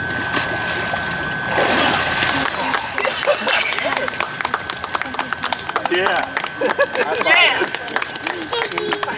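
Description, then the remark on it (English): Water splashes and churns as a person is dipped under and lifted back up during a baptism by immersion, a loud rushing surge followed by sloshing and dripping, with people murmuring and cheering. “I baptize you in the name of the Father, the Son, and the Holy Spirit.”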